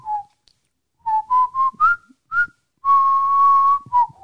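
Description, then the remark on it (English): A person whistles a short melodic tune: a few quick rising notes, then a long sustained tone and a final dip, clear and fairly loud with no talking. “That's quite impressive, though, because I can't whistle.”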